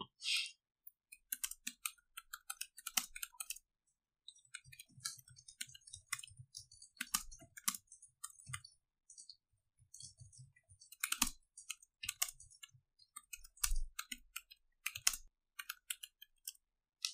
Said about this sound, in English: So much typing happening.